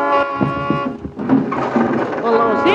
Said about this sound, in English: No, something woke me up. It sounded like an auto horn, and... You see? There it goes again. Fine time to be honking a horn. It's after midnight.